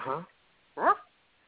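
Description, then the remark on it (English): A dog in the house gives two short, tonal yelps or whimpers, about three quarters of a second apart, moderately loud, with nothing else around them. “Dogs in the house. What the hell was that?”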